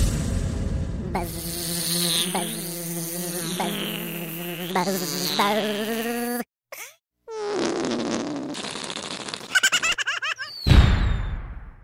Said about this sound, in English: Well, I've always wanted to hear a bumblebee sitting on a whoopee cushion. What? What? You shall have it. Here are bumblebees sitting on whoopee cushions. Sound explosion.